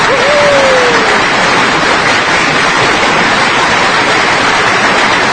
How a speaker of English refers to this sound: Thundering round, thundering round of applause there.